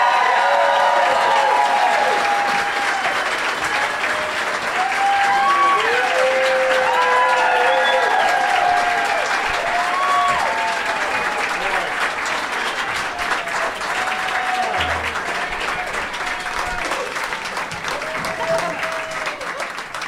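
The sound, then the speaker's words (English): A Comic-Con crowd bursts into sustained, loud applause for guests Clark Wolf, Graham Elwood, Mark Ellis and Leonard Maltin, with scattered whoops and cheers rising above the steady clapping, holding strong for about twenty seconds before easing slightly. “Give it up, everybody, for Clark Wolf, Graham Elwood, Mark Ellis, and Leonard Maltin!”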